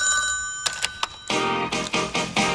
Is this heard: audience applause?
no